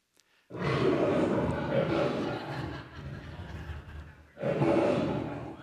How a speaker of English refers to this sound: So that was that was frightening, wasn't it? That's an actual lion's roar. It's 114 decibels. That's how loud they can actually be.